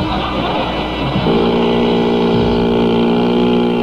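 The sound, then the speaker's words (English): A loud motorboat engine drones steadily, then its pitch settles into a stronger, humming tone after the first second. No voices are heard. “That's a no U-boat. That's my boat.”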